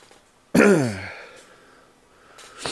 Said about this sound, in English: Okay, do your breathing.